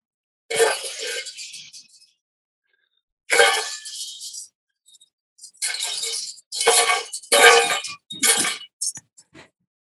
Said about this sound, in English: Sounds almost like broken glass. Kind of. Yeah, clatter. And this might be, if I was in net, you might hear this.